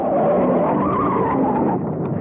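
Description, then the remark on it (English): Racing cars in a drag race at the very start of the 1962 film Carnival of Souls roar past with a loud, sustained screech of skidding tires, a dense unbroken burst of engine and rubber noise lasting about two seconds, with no voices. “Who is in a drag race at the very start of the film.”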